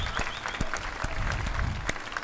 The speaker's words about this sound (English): Got it. Here's your clap.